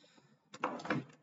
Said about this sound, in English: Just knocked the mic there.